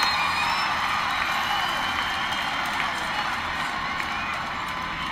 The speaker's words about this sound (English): Mace and Edmonds are over it. Crowd is into it here. Children's Mercy Park.